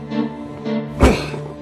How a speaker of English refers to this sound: Help me drag these boxes over to the door.